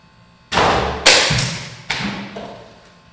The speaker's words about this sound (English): Well, we should at least get credit that I knocked the guy off at least. Yeah, you knocked my Mr. Potato Head off. I got to find his pieces later.